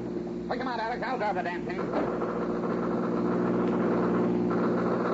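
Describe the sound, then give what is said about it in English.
A steady, loud engine drone from a car and a motorcycle in a chase, constant throughout, with a brief burst of voices over it near the start. “Try to pick off that guy in the motorcycle”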